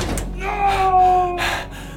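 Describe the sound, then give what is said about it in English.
An elevator door rumbles closed and slams shut, a sustained metallic hum running under a few sharp clanking bursts. “Victor pressed the button for the lowest level. And watched the elevator door slam shut.”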